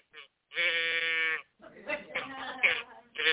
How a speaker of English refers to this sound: You want the cows? She likes the moo cow.